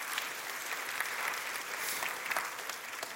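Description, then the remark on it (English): Steady audience applause, a dense wash of many hands clapping at a fairly even level for a few seconds, with faint crisp individual claps standing out here and there. “I'm glad you clapped then and not when I said, I'm going away, you know.”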